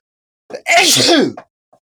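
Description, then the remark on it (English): A single loud sneeze: a brief sharp intake followed by a forceful burst lasting about half a second, then quiet. “I'm about to sneeze.”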